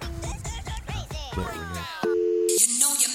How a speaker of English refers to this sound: Sorry, my phone's going off.